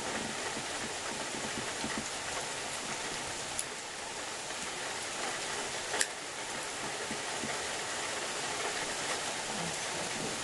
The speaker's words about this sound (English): Hear that thunder, hear it roar. Ladies and gentlemen, Scott left, and then it started raining real hard.